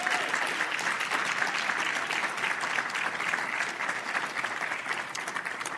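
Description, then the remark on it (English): A crowd claps steadily for several seconds, giving a round of applause to a pastor. It is a dense wash of many hands with no pauses, fairly loud throughout and with no voices standing out. “Can you guys please give this man a round of applause because he deserves it?”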